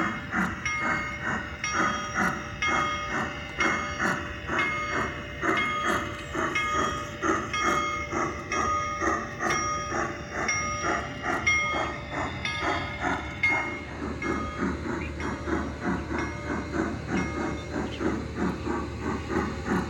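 A train rumbles steadily along the rails, with rhythmic clacking of wheels over track joints and a bright metallic hiss riding over the continuous low roar.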